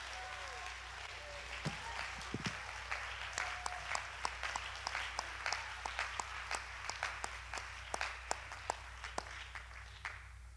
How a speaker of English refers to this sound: Clap your hands and lift your voice and give God the praise.